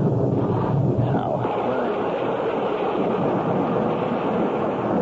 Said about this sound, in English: Only I can't see. Damn rain makes it impossible to see. Maybe I should get out and take a look around.